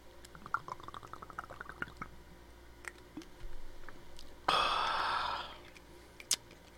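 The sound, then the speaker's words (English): Someone takes a quick swig from a small nip bottle of Bacardi Tropical rum: faint clicks and drips, then a brief rush of liquid and breath lasting about a second. No one speaks. “Yeah, have one. Bacardi Tropical. Ooh. Yeah. Cheers, buddy.”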